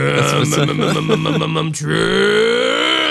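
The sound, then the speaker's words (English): A man's voice imitates his big truck's engine starting, likened to the name Trump: a low, rhythmic sputtering crank of about a second and a half, a brief break, then a steady growling rev that slowly rises in pitch. “That's why I like Donald Trump, because his last name sounds like my big fucking truck's engine.”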